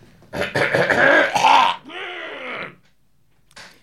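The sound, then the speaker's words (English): A loud, raspy throat clearing lasts over a second, then trails into a steady voiced hum. After a short pause comes a brief, fainter rasp. “Me clear my throat.”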